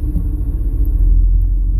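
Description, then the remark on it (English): A steady, deep engine rumble fills the inside of a truck cab, low and constant throughout with no voices, like idling or driving heard from the seat. “We're trying to figure out the best way to record in the truck without picking up too much background noise.”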